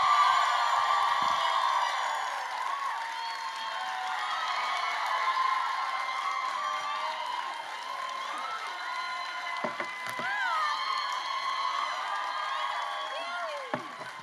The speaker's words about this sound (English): All right, I want you guys to go absolutely nuts. Bring the crowd noise up to a full 10 for me.